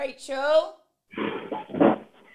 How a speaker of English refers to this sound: I mean, I can hear my dog barking. Hang on, I'm just going to pause.